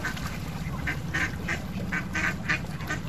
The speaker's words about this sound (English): We're coming back to our little jetty here just under John's Bridge, and the ducks are being fed by some good people on the side, and they're pretty excited. But they didn't tear off when we came by them.